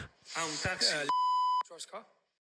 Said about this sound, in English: So that beep you heard, yeah. But he said Packy in a car.